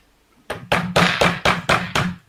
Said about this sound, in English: And he's going to run off and knock on the next door of whoever, like, he's going to go knock on Paladin's door.